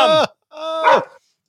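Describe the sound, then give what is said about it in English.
Two loud dog barks, a short sharp one followed after a brief pause by a longer, drawn-out bark with a rising, yowling edge. No one speaks. “We got loud dogs. Here they come.”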